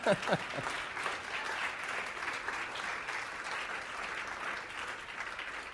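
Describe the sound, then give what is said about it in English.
Steady audience applause, given at the speaker's request as thanks, fills the whole stretch, a dense, even wash of many hands clapping at moderate volume after a brief voice fragment at the start. “Why don't you applaud, because it's awkward right now for me to cry, okay?”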